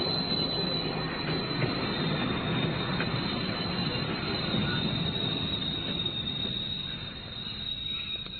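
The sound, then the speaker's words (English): A train rumbles steadily past below a house window, its carriage roofs less than 4 feet below, a loud, continuous roar with a rattling edge that eases off slightly toward the end. No one speaks. “Quickly, a train's coming.”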